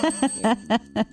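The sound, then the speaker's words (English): Someone vocally imitates a ringing bell with five quick, evenly spaced "ding" calls, fairly loud, with short gaps between each tone. “Yeah, where's the bell? Ding, ding, ding, ding, ding, ding.”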